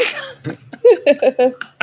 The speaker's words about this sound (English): Oh, I'll cough softly. You hear a slight cough on the wind. I'd recognize that cough anyway.